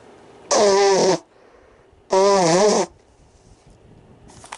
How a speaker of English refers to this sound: I'll blow my nose.